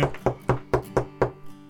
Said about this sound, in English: Meanwhile, I have knocked on the guest house.